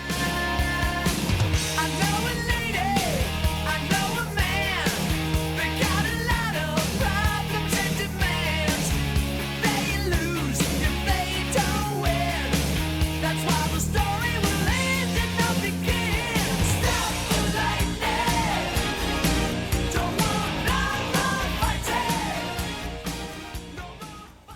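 A rock song plays at steady full volume, with a dense band sound of driving drums, distorted guitars and bass under a soaring, bending lead vocal, tapering off in the last seconds.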